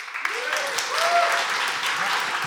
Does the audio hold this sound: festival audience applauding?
yes